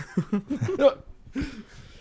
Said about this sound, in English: It's the fucking hiccups, man. It's not me.